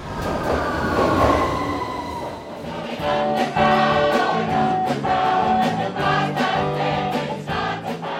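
A London Underground Northern Line tube train at Nine Elms, one of two new stations on the Northern Line extension. It is loud, with a steady rumble, a rising electric motor whine and regular clacks from the wheels over the rails. No voices.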